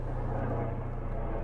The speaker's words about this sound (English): Have a helicopter passing overhead.